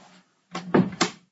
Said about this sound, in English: Can you just please close the door?